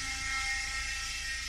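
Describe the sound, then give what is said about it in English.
A bug sprayer runs outside with a steady, buzzing mechanical drone and a faint high whine, ending in a sudden louder burst. No one speaks. “There went the bug sprayer.”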